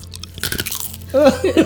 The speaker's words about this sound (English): And that crunch noise. Yeah. Crunch noise, please. Oh, I got you. There you go.